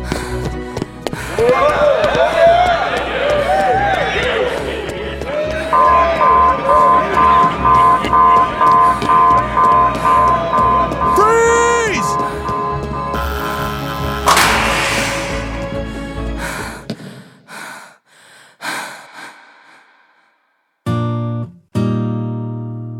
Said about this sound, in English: No. I didn't have Trish's authorization codes with the keys, so the lockdown alarm sounded.